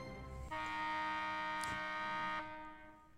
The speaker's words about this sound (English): Here's the buzzer.